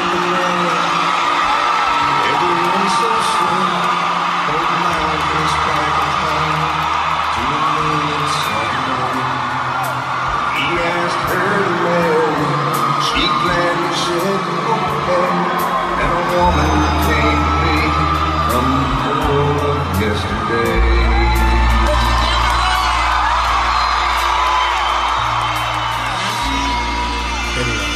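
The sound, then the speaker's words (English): A huge country music concert crowd roars and cheers wildly as a surprise special guest walks out, packed with whoops and yells that stay loud and sustained throughout, with deep booming bursts rumbling underneath. “The crowd sees him, and they start losing their mind.”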